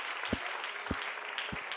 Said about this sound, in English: Come on, clap your hands to Jesus right now.